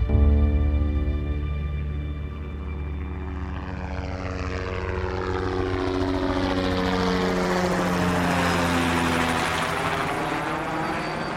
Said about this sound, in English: We jumped in another Jet Ranger, flew it on down.